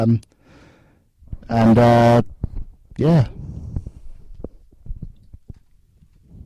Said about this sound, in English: Burp.